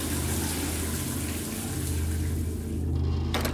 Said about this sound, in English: The steam encircled him, the water bearing down heavier than before. He was safe in the water. He was safe in the steam. He was safe in the shower.